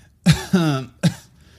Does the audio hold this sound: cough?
yes